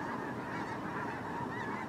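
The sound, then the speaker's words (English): A flock of birds honks continuously, a dense chorus of overlapping calls at a steady, fairly loud level, with no voices. “And the feathers are beautiful. I wonder if we shall have eggs from them soon. These birds are not really the biggest asset here now, is it?”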